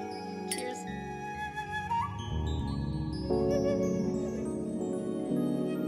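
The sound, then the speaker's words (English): Glasses clink together once near the start in a toast, a bright chime whose tone rings on and blends into sustained, steady ringing for the rest of the moment. “Cheers.”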